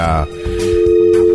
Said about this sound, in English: Okay, he's got a dial tone. We have dial tone.